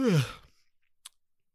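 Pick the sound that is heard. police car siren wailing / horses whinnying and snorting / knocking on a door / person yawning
person yawning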